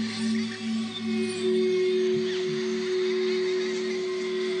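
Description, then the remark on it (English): A wolf howl rises and falls in slow wavering glides over a steady, humming drone in a music track, with no voices speaking. “I liked the wolf howl.”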